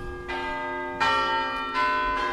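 A town hall clock bell chimes with deep, resonant tones, each strike ringing out and overlapping the last. Four strikes land about half a second to three-quarters of a second apart, with no voices.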